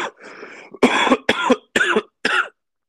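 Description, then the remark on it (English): A series of loud coughs: a rough throaty hack followed by four sharp, evenly spaced bursts, with no talking. “Need a cough button”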